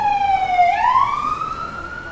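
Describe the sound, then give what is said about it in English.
A Queensland fire engine siren wails loudly, its pitch sliding down and then sweeping back up in a single continuous tone, with no voices over it. “That's what a Queensland fire engine sounds like.”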